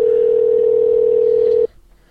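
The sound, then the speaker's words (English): A loud, steady telephone dial tone while placing a phone call hums continuously for about a second and a half, then cuts off abruptly, leaving only faint low background noise. “Let's see if she picks up her phone.”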